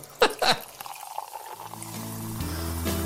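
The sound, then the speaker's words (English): Sekt (sparkling wine) being poured into a glass: a couple of sharp clinks, then a steady fizzing pour whose tone climbs in pitch as the glass fills, with no talking. “Oh, listen to that, eh? Yeah, that's that little bit of sect, isn't it?”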